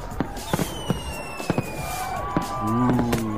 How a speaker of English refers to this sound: How about this would be better if we kick off the show with a giant spectacular fireworks display.